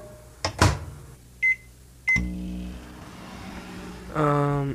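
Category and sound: household object, microwave oven running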